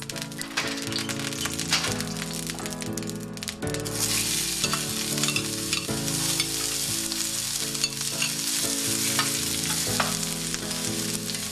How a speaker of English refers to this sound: And the first thing we're going to do is saute the onions and the mushrooms. That's the first step. I heated my frying pan, and I'm adding my vegetable oil. And first I add my onions.